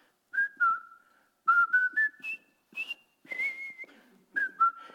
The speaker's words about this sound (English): And immediately, the men began to feel the bridge swaying under the rhythm of their marching. Well, they liked that. And so they started to whistle a marching tune.